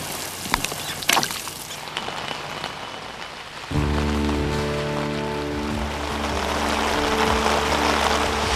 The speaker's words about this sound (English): When the rains came, he had no shelter.